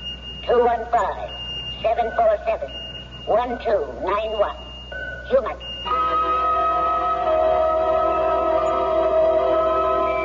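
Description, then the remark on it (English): A small electronic pocket alarm watch sounds, first as a thin high tone under muffled voices, then as a steady, continuous buzzing beep that runs on alone for several seconds. “I've got a pocket alarm watch, and it keeps trying to tell me something.”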